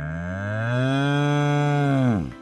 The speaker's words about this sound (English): why is there a cow in the studio?